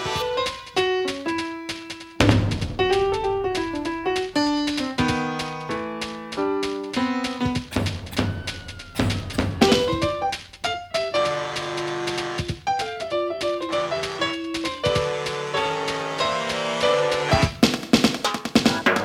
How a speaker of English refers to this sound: So then we get to one of the things I love in the song, which is the piano solo. Yeah. Let's just take a listen to that.